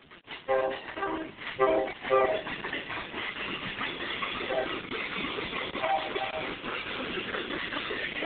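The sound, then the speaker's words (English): Freight train wheels clatter over one of three rail diamonds at the Saginaw Interlocker by the Saginaw Depot as BNSF locomotive 5386 and Norfolk Southern locomotive 9618 pass, with a string of sharp metallic knocks early on that settle into a steady, loud rumble of rolling cars. “Hear those trains impact that diamond.”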